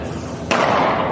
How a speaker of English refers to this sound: In cell phone video taken from a distance, you can hear the gunshot and see an orange cloud of mace.